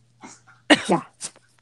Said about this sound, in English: Oh, is that Doodles? Ooh. Yeah, my chihuahua is just in the background coughing up a hairball. Everything is fine. It wouldn't be a podcast without it.